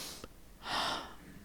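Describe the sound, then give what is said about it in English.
A single deep breath drawn in, a soft airy whoosh rising and fading over under a second, with a faint short click just before it and no talking. “Just take a deep breath.”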